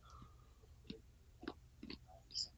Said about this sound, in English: I hear chewing. Who's eating pretzels?